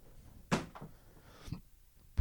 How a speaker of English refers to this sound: I think that worked, actually. I threw my crock at the door. It's a foolproof plan, really.